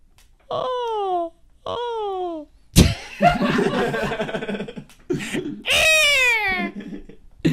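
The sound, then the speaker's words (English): A person imitates an eagle's cry: two high, shrill calls that slide downward in pitch, a burst of laughter and chatter, then a third screeching, falling call. “Eagle noise.”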